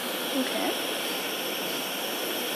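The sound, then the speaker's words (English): A steady, breathy hiss of steam escaping from a homemade Hero's engine, heated and pivoting on a knitting needle, runs unbroken and fairly loud throughout, with a brief faint squeak near the start and no voices. “Okay. There's some steam.”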